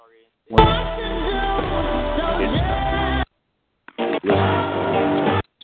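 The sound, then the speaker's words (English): Harsh, buzzing electronic interference noise blares in two long, loud bursts separated by a short break, with a brief crackle before the second burst and no talking. “Listen to him playing the interference.”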